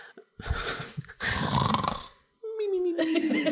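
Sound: voice imitating snoring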